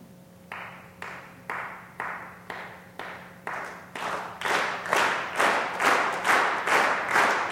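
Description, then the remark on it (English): Steady rhythmic hand clapping by band members, about two claps per second. It starts as single crisp claps from one member on the right and swells into a much louder, fuller unison clap as more members join in to amplify the sound. “So I'm going to ask some members of the band, you know, let's try one of them, all the way over here on the right, to start clapping, and then let's amplify the sound.”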